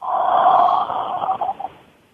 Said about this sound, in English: Come on, everyone, let's try it. Inhale and exhale slowly. Inhale and exhale.